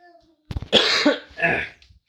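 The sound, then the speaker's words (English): A loud fit of coughing: a few quick rough bursts followed by two longer, harsh hacking coughs, with no talking in between. “I need a cough button.”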